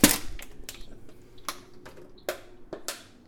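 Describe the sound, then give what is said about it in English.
A bug being swatted with a water bottle: one loud, sharp smack, then several lighter hollow knocks and taps at irregular intervals, with no voices. “I just had to kill a bug, my bad.”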